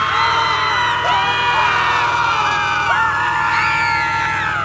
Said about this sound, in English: And all the kids and parents and teachers saw that dinosaur and they just screamed.